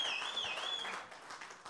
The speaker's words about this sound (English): Let's give a round of applause for God, our Lord Jesus.